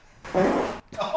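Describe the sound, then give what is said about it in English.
A loud, sputtering fart about half a second long, followed by a brief pause and the start of another voice-like sound. “Did you have to fart? No, I did fart.”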